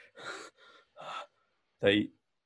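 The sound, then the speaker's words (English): A voice imitates choking: three strained, breathy wheezing bursts followed by a louder, sharp gasping rasp, fairly loud, with brief silences between. “He wheezes and coughs, his eyes bulge, his tongue kind of lolls out.”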